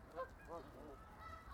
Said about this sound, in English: I don't know if they're domesticated, but a lot of the birds are caged in here, and they're fed by the Rotary Nature Center. And so it's a good spot to see. If you like Canada geese, they're all over here.